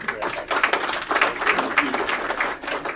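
An audience gives a round of applause to introduce a speaker from Nebraska, many hands clapping at once in a dense, crackling wash that holds at an even, fairly loud level for the whole stretch, with no one speaking over it.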